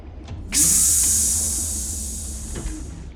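A pneumatic train door opens with a sudden loud hiss of escaping air that holds steady, then slowly fades over a few seconds above a low background rumble.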